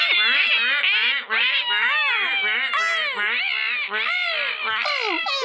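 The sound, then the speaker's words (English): A voice imitates a noisy seagull flock with a nonstop stream of shrill, wailing squawks that swoop up and down in pitch, overlapping and loud for about five seconds. “For everyone but Nim, you start hearing the sound of a noisy flock of seagulls going...”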